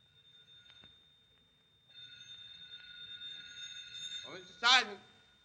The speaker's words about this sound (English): Phone's ringing. Well, answer it, will you?